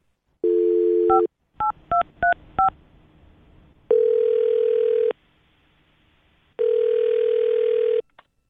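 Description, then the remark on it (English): A steady dial tone, then four quick electronic keypad beeps as a phone number is punched in, followed by two long ringing tones separated by a pause, clear with no talking. “All right, well, I'll dial his phone number right now and see if we can figure out why he just stopped talking to you, okay?”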